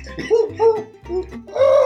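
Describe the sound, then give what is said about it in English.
A squeezed toy owl gives four breathy, honking hoots in a steady rhythm, each short and wavering, with the last one louder and longer, with no talking. “Just squeeze it like this.”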